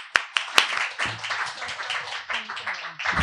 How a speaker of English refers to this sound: Let's help Sofija understand her place at the LIC Reading Series by giving her warm applause.